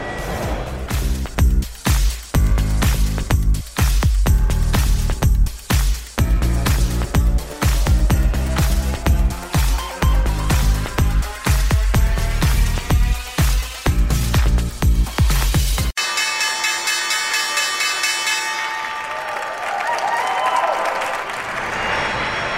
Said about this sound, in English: That was the opening bell here on Wall Street on this Tuesday.